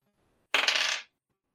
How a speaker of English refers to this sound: Bag went off the table.